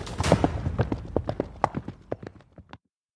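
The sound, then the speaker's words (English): Horses' hooves clip-clop in a quick, uneven patter of sharp knocks, loud at first, then thinning out and stopping before the end, with no voices. “Get to the horses!”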